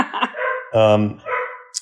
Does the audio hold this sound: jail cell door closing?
no